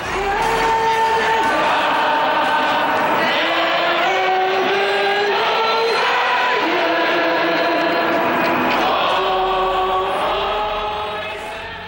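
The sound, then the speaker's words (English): Thousands of people in a large urban square in downtown Montreal on October 27, 1995, waving Canadian and Quebec flags, loudly sing the national anthem together. Many voices hold long sustained notes that shift in pitch along the melody, continuous and full throughout, with a few scattered shouts. “The sea of people waved Canadian and Quebec flags and loudly sang along to the national anthem.”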